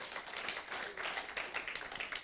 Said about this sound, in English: Come on, you can give Jesus a hand clap of praise.